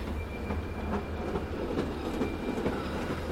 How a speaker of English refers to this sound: But then he slowed and stopped and watched the train go off.